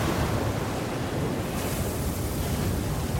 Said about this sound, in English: The Sudo Havid rolls onto her side and with a huge bang, the catches on the external doors break under the pressure, letting in a crushing flood of water.